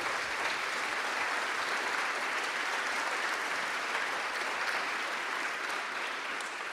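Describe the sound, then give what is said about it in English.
Sustained audience applause for Wendy Kopp, a dense, steady wash of many hands clapping at an even, loud level for several seconds with no talking over it. “Would you give her another round of applause?”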